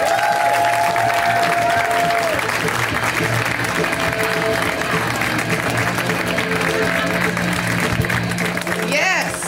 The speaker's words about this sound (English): And the first comedian coming out tonight, right now, is no exception to this rule. You may have seen her on The Tonight Show. A round of applause, everyone, for my good friend